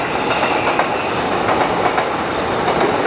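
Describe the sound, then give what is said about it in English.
A train rumbles steadily along the rails, its wheels clattering in a loose rhythmic clack over a constant loud roar, with no voices present. “Jesus, this is a lot of trains.”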